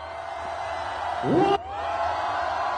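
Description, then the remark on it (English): A steady roar of a large crowd screaming and cheering on a count of three fills the whole stretch, with a loud rising whoop of cheering near the middle that cuts off abruptly before the din resumes. “On the count of three, their hands and scream.”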